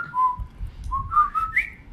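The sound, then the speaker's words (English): Someone whistles a short melodic tune, the song from the Breakfast Club as whistled by the Dinks in a film scene, a few clear sustained notes stepping up and down over a low background rumble, with no talking. “I think it's very funny also that in the scene when Lone Star and the crew pass out and they meet the Dinks, the Dinks, they're walking through and they have the apropos song from the Breakfast Club that they whistle the.”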